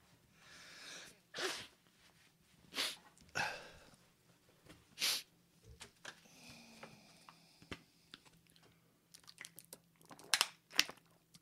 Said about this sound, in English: I'm sniffling a bit. Would you mind if I blow my nose?